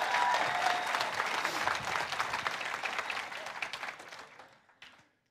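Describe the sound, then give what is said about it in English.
A crowd applauds with dense, steady hand clapping that holds strong for about four seconds, then thins into a few scattered claps and fades out. “All right, let's give her a hand clap for that.”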